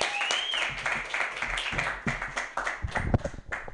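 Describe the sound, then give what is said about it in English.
An audience applauds a person being introduced, with dense, steady clapping that fills nearly four seconds, with a short whistle near the start and a few sharper claps standing out toward the end. “Anyways, start clapping right now”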